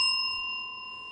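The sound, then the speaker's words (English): A single bright bell ring with steady, high metallic tones that sustain and slowly fade over about a second, with no talking. “All right, that was a good use of the bell.”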